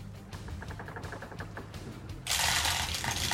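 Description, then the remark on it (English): Dice, thrown two at a time by a player, rattle and clatter across a table in a quick run of small, sharp clicks, followed by a louder, steady rushing noise. No one speaks. “He's throwing two at a time now.”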